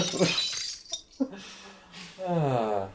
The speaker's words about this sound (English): I just picture Oprah watching that at home and just like, like holding a wine glass and like crushing it in her hand.